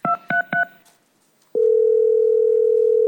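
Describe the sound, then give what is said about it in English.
Three quick keypad beeps dial 911, then after a short pause a steady, loud telephone ringing tone of the emergency call begins and holds without a break. No voices are heard. “It's ringing.”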